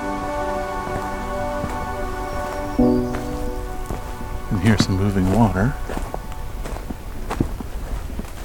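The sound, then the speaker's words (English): Steady water draining and trickling at a drain pipe on a May morning hike, the water not very high, a continuous wet hiss running the whole time, with a brief tonal voice sound and later a wavering, warbling voice rising over the water. “This is draining into something, or something is draining into it.”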